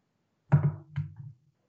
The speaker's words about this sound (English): I heard a knock. Okay, so go answer.